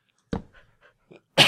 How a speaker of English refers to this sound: Oh, that was the first cough of the episode. I lasted this long. Almost made it to the end.